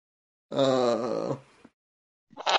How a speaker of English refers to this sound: Ignore the screaming in the background. So that's nothing.